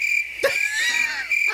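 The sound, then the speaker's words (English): A person imitates a cricket's chirp with a sustained, shrill, tonal whistle-like voice, punctuated by a couple of brief breathy bursts near the start and end. “And then when you do find it and you go try to kill it, it hops off somewhere else. And then it looks at you and goes...”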